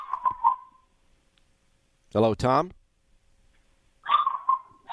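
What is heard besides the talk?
dog barking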